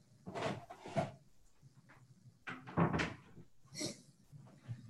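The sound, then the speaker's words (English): A door is handled and shut, with several distinct thumps and wooden clunks spaced over a few seconds, moderately loud, with no talking. “I'm going to shut my door.”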